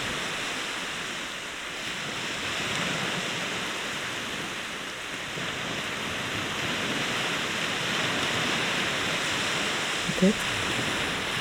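A steady, hissing wash of ocean water drawing back from the shore, continuous, with no voices and only a faint brief knock near the end.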